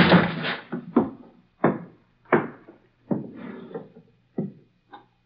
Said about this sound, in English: I never thought I'd have to kick down a door to get you.